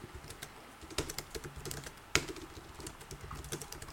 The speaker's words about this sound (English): Well, speak while I'm doing it then. But you're typing over us.